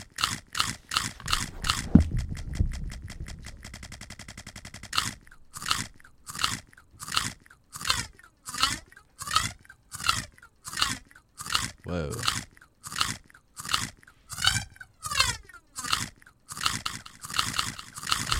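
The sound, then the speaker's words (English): Loud, crisp crunches of chips being eaten repeat in a rapid, echoing rhythm, each bite smeared into a trailing delay effect that stutters on steadily, bright with no talking over it. “It's a crazy delay.”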